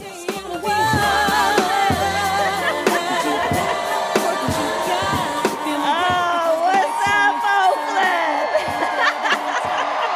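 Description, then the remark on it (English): A crowd of about 22,000 packed into a plaza at a Kamala Harris rally cheers loudly without pause, many voices blending into a dense, sustained roar with shouts of "Kamala, Kamala" and whoops rising above it. “In her signature blue pantsuit, waving to the crowd, she was greeted to cheers of "Kamala, Kamala."”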